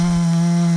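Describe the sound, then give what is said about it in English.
A voice imitates the steady drone of fans in stage lights picked up by omni condenser microphones over a stage: one sustained, low, buzzy hum held evenly for just under a second, fairly loud, with no other talk. “you'd hear this kind of background air conditioning noise”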